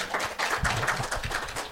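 A group applauding, many hands clapping in a dense, steady patter that holds at an even loudness for under two seconds, with no voices over it.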